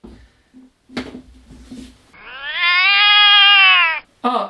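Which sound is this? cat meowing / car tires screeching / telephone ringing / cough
cat meowing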